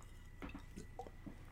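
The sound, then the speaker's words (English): Wet, squishy mouth noises of someone slurping and chewing a jello shot, a few soft smacking clicks in an uneven rhythm ending with a sudden louder slurp. “Slurp it. Chew it. Probably sounded gross for the audio listener or something.”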